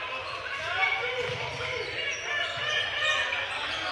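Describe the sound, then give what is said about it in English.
A basketball dribbles on a gym floor during a Mountain Brook Spartans game, the ball worked right to left from the right corner: a steady run of thumping bounces over a dense wash of crowd noise and indistinct background voices. “Ball tucked away in the right corner, dribbling right to left.”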